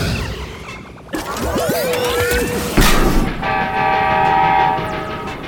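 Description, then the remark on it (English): A train rumbles and clatters while a loud horn sounds in a long sustained blast, followed by a sharp bang and a steady, high whistling tone over the rolling noise. The train is Mighty Mila, transformed back into a train and headed for a water tower. “She transformed back into the train?”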